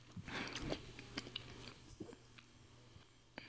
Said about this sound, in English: Sorry, guys, I'm enjoying these Reese's.